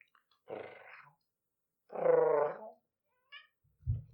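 cat meowing

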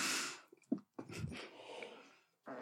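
sneeze

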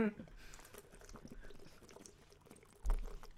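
drinking water

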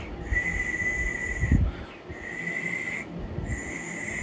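failed attempt

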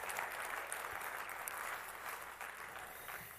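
audience applause

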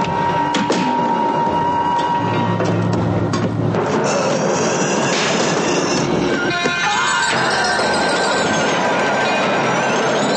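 train rolling on rails

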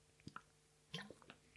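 sipping water

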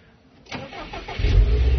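car engine starting

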